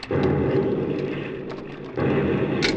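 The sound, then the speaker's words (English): A line of boats blowing up in a loud, rumbling explosion: a heavy roar that fades slightly, then a second booming burst at about two seconds, ending with a brief hiss. “He's at the line of boats. There they blow.”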